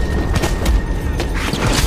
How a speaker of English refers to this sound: Glass smashed out of a high window as a dark shape burst into the room.